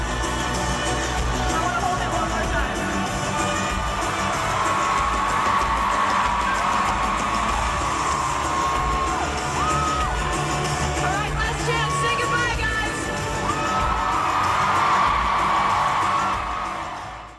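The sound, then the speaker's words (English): A huge stadium concert crowd roars and chants wildly as members of the US team that won the FIFA Women's World Cup are brought on stage with the trophy, a dense wall of screaming voices with shrill whoops and whistles rising above it, loud and sustained throughout. “getting the opportunity to hold the trophy while the crowd wildly chanted.”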